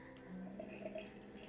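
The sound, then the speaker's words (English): Hot water at 200 degrees Fahrenheit pours steadily into a glass pitcher for making tea, a soft continuous gurgling stream at low volume for a brief moment, with no talking. “And I'm going to fill my glass pitcher with some water.”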